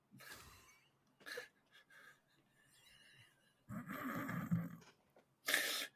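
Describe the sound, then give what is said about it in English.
A person imitates a goat's bleat in several breathy, bleating bursts, the longest and loudest near the end, separated by short pauses, with no talking. “do a funny little goat sound.”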